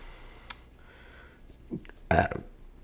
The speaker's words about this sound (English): Sorry, burping on mic is gross. It's gross.